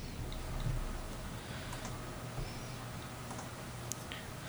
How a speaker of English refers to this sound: Okay. I was just about to read my password out loud, like when I was typing it, that would have been bad.